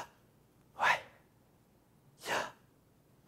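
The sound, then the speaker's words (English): Deep breathing: a rushing inhale, a pause, then a long airy exhale, with another breath just starting at the end. No one speaks. “Think about this when you inhale and exhale.”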